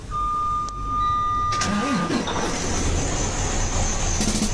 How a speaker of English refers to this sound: Customer states, truck sounds like a snare drum.